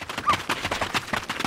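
Quick, evenly spaced video game footsteps patter along in a steady running rhythm, each step a crisp thud, with no talking over them.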